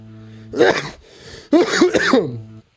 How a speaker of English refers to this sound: I like coughing now. It's kind of my thing.